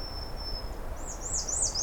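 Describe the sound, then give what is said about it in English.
Songbirds, including a white-throated sparrow, house wren, American redstart and blue jays, sing outdoors early on a mid-May 2023 morning near the entrance to the Crane Lake Trail: a thin, steady high whistle gives way to a quick run of rising-and-falling chirps, fairly faint, over a low rumble of wind. “But white-throat sparrow, house wren, American redstart, blue jays.”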